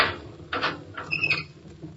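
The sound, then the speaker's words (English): A prison cell door being unlocked at the warden's order: a few sharp metallic clanks and rattles, followed by a short, high-pitched squeal of metal, then a softer clunk. No one speaks. “Unlock the door, Gus.”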